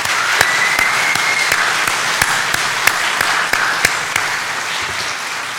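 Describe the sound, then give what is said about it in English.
A crowd applauds a group of seniors steadily, a dense wash of many hands clapping with a few sharper claps standing out. The applause holds at an even, fairly loud level throughout, with no talking. “Would you please give them a round of applause?”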